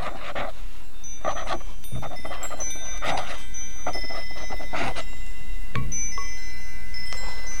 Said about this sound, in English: And he is there, sitting there, watching the mad boy silently writing his history, while the wind chimes softly move in the evening breeze.